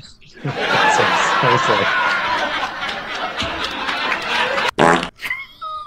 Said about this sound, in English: And that fart is like, why is it so much bigger than the rest of well, it?